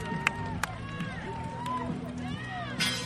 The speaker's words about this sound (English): You can hear the crowd going crazy. It's getting loud.